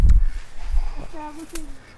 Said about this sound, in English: But they are ducks. And it did make them make more noise. It did make them make more noise, which is kind of exciting.